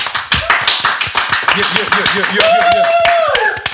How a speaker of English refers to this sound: I'm going to keep clapping so we sound really popular.